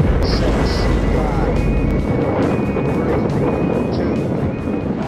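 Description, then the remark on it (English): A Saturn V rocket's engine ignition roar at the July 1969 Apollo 11 launch: a loud, continuous, deep rumbling blast filling the whole clip, with a few short high-pitched beeps and a faint thin tone riding above it. “In July 1969, a Saturn V launched the astronauts of Apollo 11 on their historic mission to land on the moon.”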